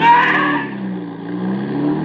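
A car engine roars loudly at first as the driver steps on the gas, then settles into a steady droning hum with a slight rising pitch as the vehicle accelerates away. No voices are heard.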